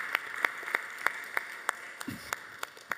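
An audience applauds, with crisp claps landing in a steady, evenly spaced rhythm over a constant background hiss, moderately loud throughout and with no voices.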